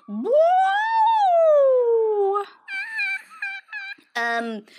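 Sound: voice imitating a siren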